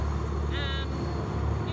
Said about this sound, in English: Yeah, I mean, there's a train right here passing on one side. There's a bus on the other.